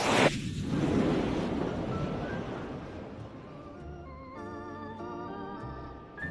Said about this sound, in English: I'm expecting the sound effect of an FA-18 Hornet fighter jet catapulted from aircraft carrier sound.